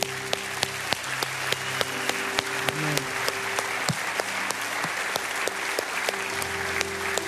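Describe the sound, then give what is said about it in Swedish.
An audience breaks into sustained applause for everyone after people are invited forward for a prayer of salvation, dense steady clapping over a held musical hum, with a few sharper claps standing out and a voice briefly heard at the start. “Så en applåd allihopa.”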